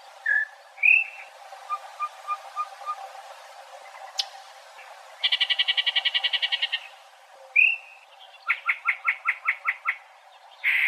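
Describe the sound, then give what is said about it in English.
A bird sings a bizarre, varied song: short whistled notes, a rapid buzzy rattling trill, then a string of loud, evenly spaced chirps, all clear with no talking. “They have one of the craziest songs that you'll ever hear.”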